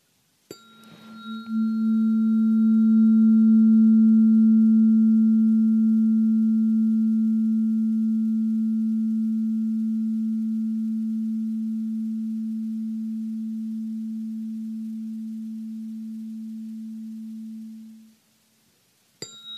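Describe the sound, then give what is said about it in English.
A tuning fork is struck once and rings a steady, low pure tone with faint higher overtones, sustaining and slowly fading for around fifteen seconds before being abruptly stopped. No one speaks. “I'm not really familiar with the tuning forks.”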